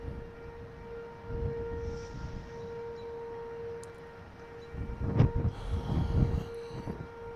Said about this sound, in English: Can you guys hear it? You guys hear it? The tornado sirens.